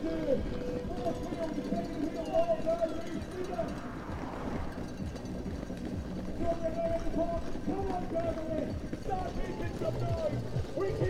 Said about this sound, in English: The fans are banging as hard as they can on the boards here. The boards are rocking.